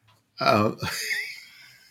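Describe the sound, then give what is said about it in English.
A man lets out a short, strained vocal groan while stretching, then trails off into a breathy, wheezy exhale. “as … stretches. I'm not yawning.”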